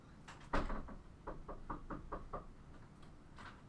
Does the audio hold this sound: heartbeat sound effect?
no